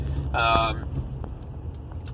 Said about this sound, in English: I hope you will give me 1 second as I avoid this trash truck. Thank you.